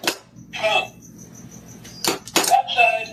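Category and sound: animal, dog scratching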